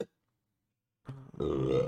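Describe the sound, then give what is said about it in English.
A loud, drawn-out burp erupts after a moment of silence, starting with a rough gulp and swelling into a long, voiced, resonant belch. “I'm already burping.”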